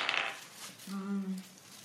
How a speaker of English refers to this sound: I'm scared because I've rolled all my good dice. I'm going to roll up one, I bet.